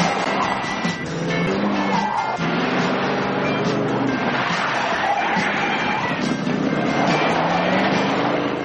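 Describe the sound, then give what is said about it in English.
A car engine roars loudly and continuously as the vehicle speeds down the road, its pitch rising and falling with shifts in speed, over a dense wash of background noise. “that's Bo and Luke. Just like you'd expect, burning up the road”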